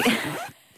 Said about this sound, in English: Make the noise, please. There's a lovely zip around that. Let's just have that. Here we go. There we go. That's a very satisfying. It's like someone getting out of a sleeping bag at night.